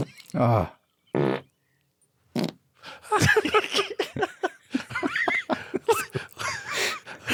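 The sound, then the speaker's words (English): Two short, low, buzzy fart sounds burst out in quick succession, followed after a pause by people talking and laughing excitedly. “It's a fart.”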